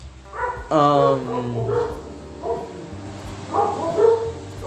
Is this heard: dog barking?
yes